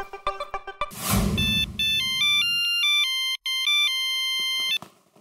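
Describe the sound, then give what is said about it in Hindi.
A phone's outgoing call to a doctor rings with a bright electronic melody of steady beeping tones, loud, after a brief rustle and a few soft clicks, with no one talking. “मैं अभी फोन करता हूँ”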